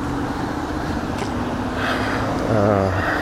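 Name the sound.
passing cars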